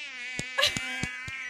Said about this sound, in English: Oh, damn it, mosquitoes. Anyway, what are we reviewing today, guys? I'm like, what the heck is that noise? When I heard it, I was just like, is there a mosquito in here?